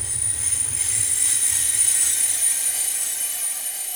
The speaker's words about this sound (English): The train comes to a sudden halt. It's not like when it moved off at first. Like, it moved off at sudden speed, but you kind of all kept your feet. This feels like it has slammed on the brakes and come to a sudden halt, and you're all kind of thrown